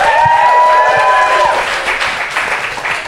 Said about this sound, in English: You guys have been an incredible audience. Give yourselves a big round of applause.